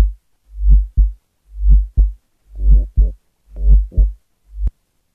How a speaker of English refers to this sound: Futuristic heartbeat. This is what your heartbeat will sound like in the future.